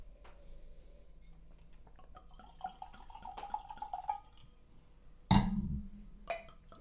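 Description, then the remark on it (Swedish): Salmon-pink rosé wine glugs out of a bottle in a series of gurgling pulses, ending in a louder, low burst of liquid, with no talking. “Jag hoppas ni hör kära lyssnare hur hur det klockar.”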